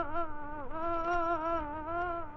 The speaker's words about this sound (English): A difficult question to answer, but perhaps this story begins with a fly. Yes, an ordinary, pesky, buzzing fly.